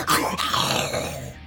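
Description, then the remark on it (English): A dog snarls and growls in a short, harsh burst with a sharp yip near the start, loud, then trails off over about a second and a half. “It's fucking dog, you've dealt with these before.”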